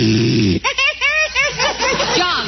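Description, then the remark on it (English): A man snores in his sleep with a low, buzzing rasp for a moment, then breaks into a run of high, wavering vocal murmurs and whimpers as he dreams, fairly loud. “you said you wouldn't snore”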